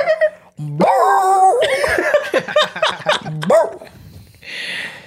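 A small pet dog barks in a run of loud, strained, almost choked-sounding yelps and whines, coming in quick irregular bursts before trailing off into a brief rustle.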